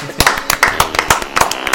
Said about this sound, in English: Do you want to do that clapping thing?